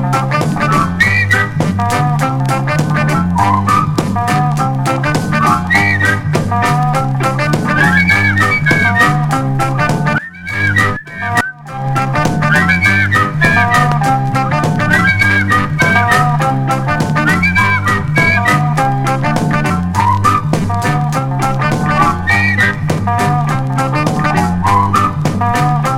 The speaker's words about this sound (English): Come on, pucker your lips. Let's hear you whistling. You girls will be good at this, all that pouting you do.